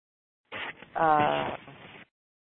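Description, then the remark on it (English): A single sneeze, moderately loud: a breathy lead-in, then a strong voiced burst that trails off into a hissy exhale, with no talking around it. “bless you, maybe?”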